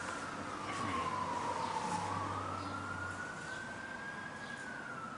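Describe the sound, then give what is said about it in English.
An ambulance siren wails slowly, its pitch sliding down and then rising again over a steady low rumble of traffic, with no one talking. “That ambulance is going to pick you up. If that's a police car, that could be you they're coming for.”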